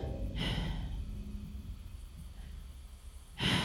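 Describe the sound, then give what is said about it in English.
A voice imitates labored breathing: a heavy, rasping breath near the start, a quieter low rumble, then another harsh gasp at the end, fairly loud, with no words spoken. “You're watching him and his breathing is becoming very labored.”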